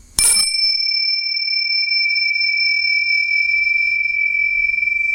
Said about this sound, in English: Medication gong? Medication? Meditation gong says yes. Medication gong? It could be a medication gong.